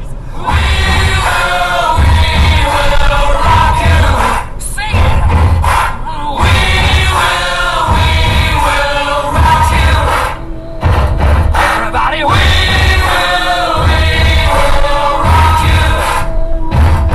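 A stomp-clap rock song plays loudly, its steady stomp-stomp-clap beat pounding under a sung vocal line, with brief dips in the sound between phrases.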